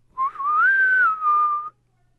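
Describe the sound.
A person whistles a single sustained note of about a second and a half, rising slightly then holding steady and clear, imitating the Midnight Whistler's booming whistle that resembles a steam engine. No talking.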